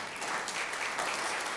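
A crowd applauds steadily, a dense wash of many hands clapping at once with no pauses, holding an even, moderate loudness throughout the short stretch.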